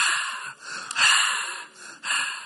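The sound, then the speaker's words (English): Quick, heavy gasping breaths, fairly loud, repeating in an uneven rhythm of about four pants with no talking. “His heart is beating, he's breathing.”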